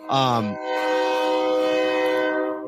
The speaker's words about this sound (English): I hear the train in the background. You know, this train. You know, it's Friday night preview time during the season when we hear the train.